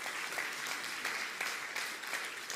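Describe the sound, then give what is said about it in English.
A crowd claps for the Christians Against Poverty (CAP) Debt Relief Centre's 88th client or family set free from debt, a dense, even wash of many hands with a few sharper individual claps standing out, sustained at a fairly loud level without any voices. “You can clap that.”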